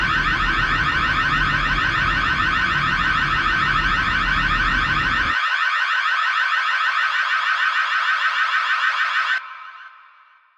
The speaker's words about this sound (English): Sorry for the big blast of alarms at the end there. Hope that didn't blow your eardrums off too much.